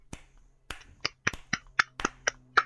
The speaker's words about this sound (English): That just sounds really wrong. Does that feel good? That's not me clapping.